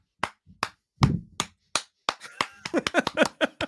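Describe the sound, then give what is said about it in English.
A single person gives a slow 'Shia LaBeouf clap' over a last-minute poll win: sharp, evenly spaced claps at first, then the claps quicken and crowd together into a faster run toward the end. “I'm giving you the Shia LaBeouf clap.”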